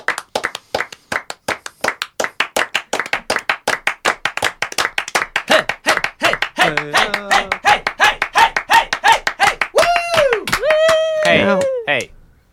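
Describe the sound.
A steady, brisk rhythm of hand clapping continues for about twelve seconds, with excited voices joining in partway through, whooping and cheering in rising and falling tones over the claps.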